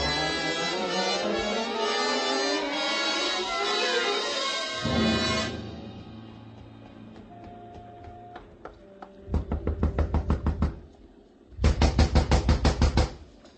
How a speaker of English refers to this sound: A gentle knock does it, Mac. Shall we try again?